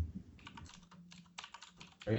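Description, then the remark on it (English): Quick clicking keystrokes on a computer keyboard, a rapid irregular patter of taps at moderate volume, with faint low voices murmuring in the background and a louder thump near the end. “Is someone typing in Blue's Scruff McGruff?”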